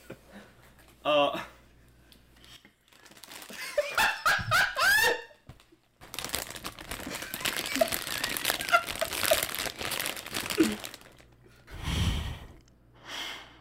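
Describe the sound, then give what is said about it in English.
Chips being eaten: a snack bag crinkles and rustles in a long, busy burst, with sharp crunching noises and a breathy sigh toward the end. “Welcome to chip eating ASMR.”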